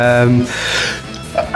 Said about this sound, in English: sneezing. That's you. Thank you. I'll cut that.